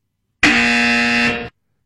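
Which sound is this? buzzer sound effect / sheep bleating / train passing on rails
buzzer sound effect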